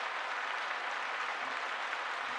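A dense, steady burst of celebratory applause, many overlapping claps blending into a continuous patter at a moderate level for a couple of seconds, with no voices.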